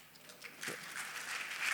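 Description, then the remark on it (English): An audience applauding, a dense wash of many hands clapping together that swells slightly over about two seconds, with no voices rising above it. “This is not to get your applause”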